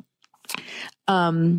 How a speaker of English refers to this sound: Sips Coke.